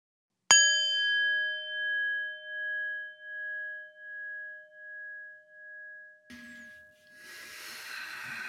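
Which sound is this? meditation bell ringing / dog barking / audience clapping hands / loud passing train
meditation bell ringing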